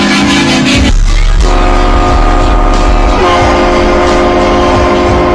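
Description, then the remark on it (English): A loud, blaring train horn installed on a car blasts continuously with strong sustained tones over a low rumble, shifting pitch partway through, with no talking. “These train horns for vehicles.”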